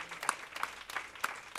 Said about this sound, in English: I just want to ensure, first of all, just give God a hand clap of praise for the word of God and the man of God.